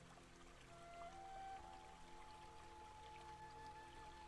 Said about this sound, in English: Ooh, let's pour some tea into our cup now and give it a stir.